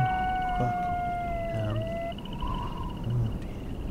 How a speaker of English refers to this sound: Those aren't dogs, they're coyotes! Oh my god, no!